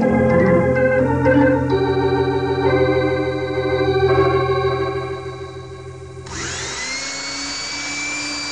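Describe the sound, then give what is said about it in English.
A high-speed drill whines steadily with shifting pitch, then grinds harder and louder as it bites into metal near the end, drilling toward a time lock. Continuous, with no voices. “I can get this high-speed drill through to the time lock”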